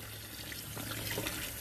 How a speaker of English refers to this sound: Alright, washing dishes from yesterday. Right now.